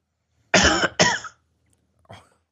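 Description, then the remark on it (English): Two loud, harsh coughs come back-to-back, followed a moment later by a much softer, brief throat-clearing cough. No one speaks. “I'm going to send you a cough button.”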